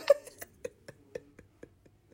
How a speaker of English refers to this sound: No, I have this cough, and sometimes I have to cough.